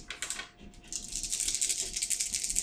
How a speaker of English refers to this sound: Dice rolls, listeners. And that's 10, 16, 23, 27 damage.